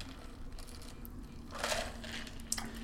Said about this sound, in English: By you chugging a glass of ice.